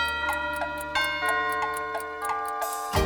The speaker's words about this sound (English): The mouse ran up the clock. The clock struck three.